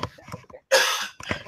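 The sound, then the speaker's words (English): Some quiet talk, a brief pause, then a loud, harsh, rough phlegmy winter cough bursts out, followed shortly by a second, weaker cough. “I have to cough.”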